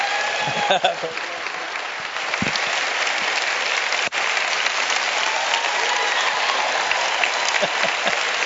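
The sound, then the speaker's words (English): A church audience breaks into steady, loud applause for their new pastor, a dense wash of clapping that holds evenly throughout with a few brief vocal shouts mixed in. “Stand up. Give him a great hand.”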